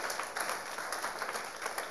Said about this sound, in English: Give the Lord a clap for that.